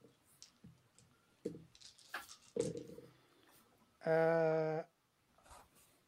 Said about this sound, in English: Give me a moment of dice rolling here.